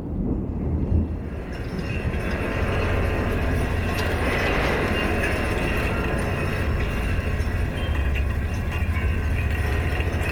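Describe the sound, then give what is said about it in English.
Wind-vibrated wire fence that runs around the perimeter of a property, heard through a fence post: a steady, loud droning rumble with layered humming tones and faint high metallic ringing, sustained without pause and with no voices. “This is the sound of a wire fence that runs around the perimeter of the property, and that's kind of an interesting story because I thought this fence was such an insult to the landscape in a way.”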